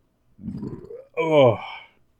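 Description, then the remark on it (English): A low, sputtering rumble like a failed fart or gurgling stomach rises briefly, then a strained, voiced groan follows right after, fairly loud. “Oh, I think that was supposed to be a fart.”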